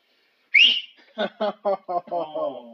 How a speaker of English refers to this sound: I can whistle. I can do a whistle right now.